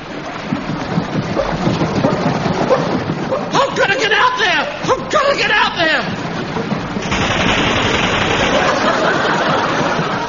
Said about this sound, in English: What's going on there? They're firing at me. I've got mad. They're raving mad. They're in the boat.